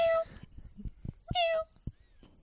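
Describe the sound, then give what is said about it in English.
A person voices two meow-like cries, one at the start and another a second later, each a harmonic, sliding call, with soft thumps and low background noise between them. “Or what make your best cat noise?”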